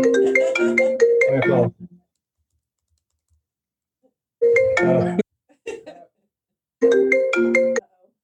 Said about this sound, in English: you're allowed to have a phone call. It's one of my kids.